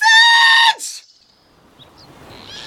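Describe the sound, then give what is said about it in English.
A woman lets out one loud, piercing, sustained scream lasting under a second, cut off abruptly, followed by quieter rustling and faint background noise. “I'm stuck in a tree with a woman screaming.”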